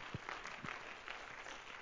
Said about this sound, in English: Why don't you clap your hands to the Lord once again?